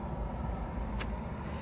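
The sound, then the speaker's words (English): A white car rumbles by, driving past for the second time, a steady low road-and-engine hum holding even throughout, with a brief sharp tick partway through. “That's the second time that white car is driven by.”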